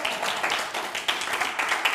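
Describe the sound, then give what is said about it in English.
A church audience claps together in a dense, continuous wash of applause, steady and fairly loud, with scattered sharper claps rising above the crowd's sound and no voices standing out. “Come on, clap. You can clap for that.”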